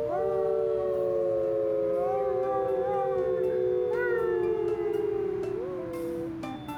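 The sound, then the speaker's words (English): Several people together imitate a wolf howl, long sustained overlapping tones that slowly slide in pitch, loud, with one voice swooping upward near the end before the chorus fades. “Found Stories tonight was very about the wolf howl”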